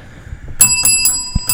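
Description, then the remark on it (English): A bright bell rings in quick jingling bursts, about four strikes in a loose rhythm, with a sustained metallic shimmer hanging between them. It is fairly loud, with no voices. “Oh, not Jingle Bell, right.”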